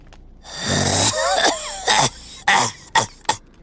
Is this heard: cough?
yes